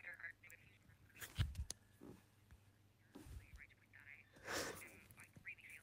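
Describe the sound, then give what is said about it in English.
A bad phone line breaks up, a voice dissolving into warbled, quacking fragments with short dropouts and bursts of distortion over a steady low hum. “Sorry, I don't have the connection there.”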